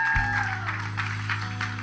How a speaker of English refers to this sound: So let us give one last round of applause to all the fathers in here.